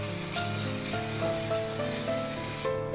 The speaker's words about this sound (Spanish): Ahora aplico spray desmoldeante al molde.